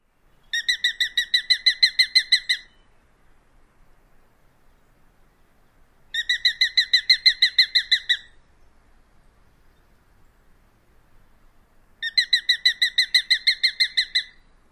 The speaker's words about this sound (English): As you can tell, it is thinner and higher than the Cooper's hawk. Here is another version of the sharp-shinned hawk rattle.